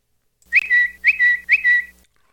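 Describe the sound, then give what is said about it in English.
A person whistles an imitation of a bird tweeting: three quick, evenly spaced high-pitched phrases, each a sharp rising chirp followed by a brief steady trill, with no talking. “I made the tweeting sound.”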